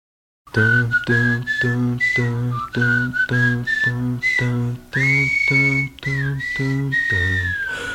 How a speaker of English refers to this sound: Whistling.